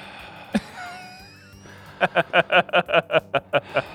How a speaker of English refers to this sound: Oh my gosh. Ridiculous. I'm like panting over here, so caffeined up.